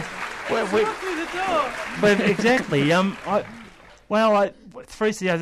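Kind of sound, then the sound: sound effect, applause sound effect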